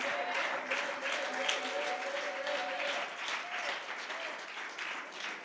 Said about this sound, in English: Come on, clap your hands unto him.